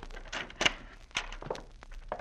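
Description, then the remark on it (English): A house door opens with a solid thunk, followed by a few uneven footsteps of people walking right into the house, each a short, muffled knock at moderate volume with no voices. “Now, if the door's unlocked, we'll walk right in.”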